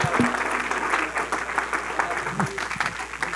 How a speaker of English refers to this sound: In Jesus' name, can we clap our hands unto the Lord?